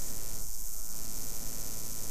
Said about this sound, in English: Could you stop trying to get energy from the equipment? It's affecting their reporting on all of you here at Point Sur. Would you mind stopping the static?